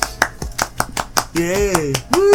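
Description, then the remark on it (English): About eight sharp hand claps ring out in a quick, steady rhythm, followed by loud whooping and cheering voices that rise in pitch at the end. “Clap, motherfucker!”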